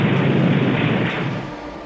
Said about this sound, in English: When you have a short circuit in the field, like actually at the location, it causes arc flash, means an explosion of electrical plasma.